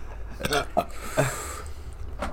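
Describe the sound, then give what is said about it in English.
A few short, abrupt hiccups, spaced irregularly over a couple of seconds, each a quick voiced gulp against a low background hum. “The hiccups.”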